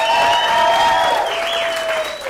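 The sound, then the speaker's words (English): An audience at a comedy show claps steadily and loudly for the bar staff for a couple of seconds, a dense wash of applause with a sustained high whistle-like tone riding over it, fading slightly at the end. “Before I do so, let's give a hand to the bar staff. Let's give them some love right quick.”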